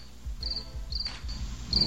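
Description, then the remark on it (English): Crickets chirp in short, high-pitched trilling bursts that repeat every half second or so, over a steady low rhythmic pulsing, with no one talking. “Brought the Crystal Pepsi line out, got fucking crickets”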